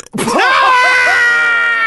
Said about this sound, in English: That was a good burp.